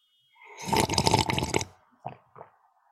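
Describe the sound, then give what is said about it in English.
A long, loud, wet slurp of alphabet soup lasting about a second, followed by two quick, softer slurping sips, with no talking. “Well, let me see what slurps into my mouth.”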